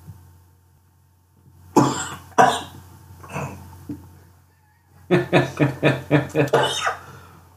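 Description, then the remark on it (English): Harsh, choking coughs break out in a few separate bursts, then a rapid run of about eight sharp coughs in a row, loud and strained, after a sip of coffee with water in it went down the wrong way. “That was not the water's fault, that was mine. Swallowing is one pipe, breathing the other.”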